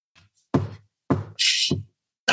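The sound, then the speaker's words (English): A voice imitates knocking on a door: a few loud, separate bursts spaced about half a second apart, with a brief hissing sound in the middle of the sequence. “He walked up the drive and knocked on the door.”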